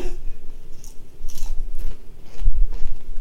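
Crunching on chips: a series of sharp, crackly bites and chews come in irregular bursts over a low rumble, with a louder crunch near the end and no talking.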